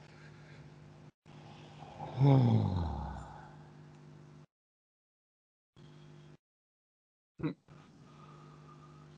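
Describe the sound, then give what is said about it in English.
A slow, deep breath, followed by a long, relaxed sighing exhale with a soft voiced tone, then brief quiet breathy sounds and a short sharp sniff, taken as relaxed breathing practice. “We're more interested in taking a normal, longer breath that's relaxed and easy, especially the out-breath, that it becomes like a sigh.”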